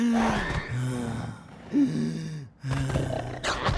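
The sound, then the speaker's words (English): A voice makes loud, raspy, labored gasping breaths, several strained, groaning pulls of air one after another with brief pauses between them, imitating someone struggling to breathe as a symptom of the coronavirus. “Third, trouble breathing. It might even sound like this.”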